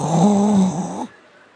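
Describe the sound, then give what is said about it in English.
A person imitates a single drawn-out snore with the voice, a loud, rough, nasal rumble lasting about a second before cutting off into quiet room noise. “I'll be snoring.”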